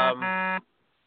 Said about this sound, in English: There goes that beep.